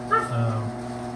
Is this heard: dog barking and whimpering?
yes